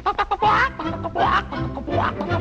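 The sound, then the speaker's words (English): A person imitates a hen clucking with a few short, bouncy vocal bursts followed by rising, squawky calls, fairly loud, with nothing else around it. “and all she has for company are a hen.”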